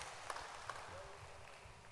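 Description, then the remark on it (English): A faint spell of scattered audience applause for two people called the Word Stars, many hands clapping at once in a soft wash of claps with a couple of sharper individual claps standing out early on. “But clap your hands for them.”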